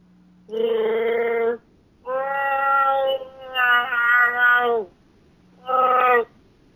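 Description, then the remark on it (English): A person imitates a Wookiee roar with loud, wavering, howling vocal bursts: a long groan, then a longer warbling stretch, ending with one short final howl after a pause. “Hello, and this is my Wookiee roar.”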